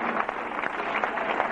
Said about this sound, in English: Give Him a hand clap of praise right now, would you? Thank You, Lord.